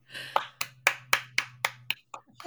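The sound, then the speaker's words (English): A short burst of steady, sharp hand claps, about seven in an even rhythm, followed by a couple of looser, softer claps as it trails off, over a low constant hum. “Clap for that.”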